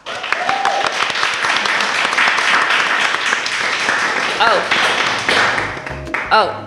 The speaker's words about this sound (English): we'll just have one more clap for our artists.